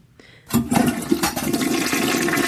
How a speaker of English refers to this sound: I've been waiting for that toilet sound